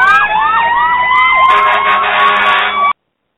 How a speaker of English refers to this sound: You hear that noise? Yeah. You hear those sirens?